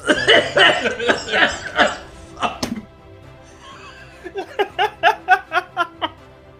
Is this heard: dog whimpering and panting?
no